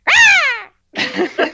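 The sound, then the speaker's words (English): A voice imitates a hawk screech: a loud, high harmonic cry that arcs up and slides down, then after a short pause a harsher, raspier second burst. “So he then considered a replacement animal and said a hawk screech.”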